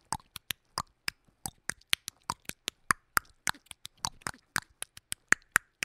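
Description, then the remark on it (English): A voice imitates the tongue clicking that an ancient African tribe of bushmen uses to communicate: a rapid, uneven string of around thirty sharp, crisp clicks with tiny pauses between, some brighter and louder than others, and no speech. “And they communicate with a series of clicking sounds. They're like...”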